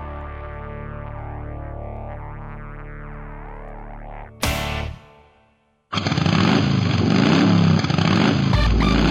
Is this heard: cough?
no